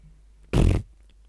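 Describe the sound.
A single loud fart sound, a short buzzy burst of about a third of a second, standing alone against a quiet background with no talking.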